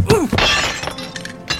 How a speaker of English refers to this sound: You done pulled my chair right out from under my hindquarters. You young western ruffian. As soon as I get up off this floor, I'm going to...